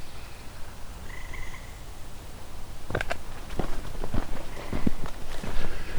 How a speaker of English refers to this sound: As you can hear, there's also tree frog here.